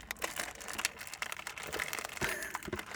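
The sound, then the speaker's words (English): A snack packet crinkles and crackles as it is pulled open, a steady run of sharp, papery rustles with brief louder crunches scattered throughout, heard on its own without talk. “I'm trying to go for the opening.”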